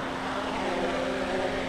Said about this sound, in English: We spot two men flying drones above the crowd. That was cool.